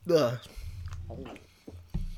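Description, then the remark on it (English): A short voiced murmur, then wet, sticky chewing of a gum-like candy with the texture of toothpaste: low, mushy smacks and a few soft clicks repeating unevenly, moderately loud, with the mouth working steadily on it. “It's got the texture of toothpaste. The problem is you can't stop chewing it.”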